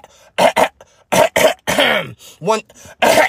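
Loud coughing in quick pairs and short bursts, broken up by a rough, voiced throat-clearing rasp in the middle. Several coughs in all, with brief pauses between them and no talking.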